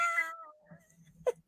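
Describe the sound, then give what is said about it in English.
A person's voice imitates a cat from a TV commercial jingle, singing a long, falling meow, followed after a short pause by a brief second meow. “What's that cat commercial? Meow, meow, meow, meow, meow, meow, meow, meow.”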